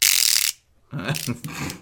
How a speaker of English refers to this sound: Caleb has treated us to some good old fashioned 1920s humor with a hand buzzer.